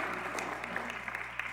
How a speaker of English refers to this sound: Let's give a special round of applause to Joya Lytle for playing herself.